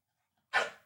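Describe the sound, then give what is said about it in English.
A single sharp dog bark, fairly loud, bursting out of silence and trailing off quickly with no other sounds around it; the dog is barking at a box of Magic Spoon keto cereal. “He's barking at the box of magic spoon.”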